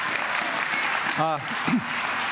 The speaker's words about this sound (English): And you guys are incredibly blessed to be able to have a worship team like this. Some applause for your amazing worship team.